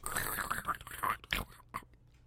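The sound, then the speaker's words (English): A voice imitates a campfire's crackle with a rough, hissy stream of crunchy pops for about two seconds, ending in a few sharper separate snaps before fading out. “Imagine yourself sitting around a campfire with your favorite chums. Listen to the crackle of that fire.”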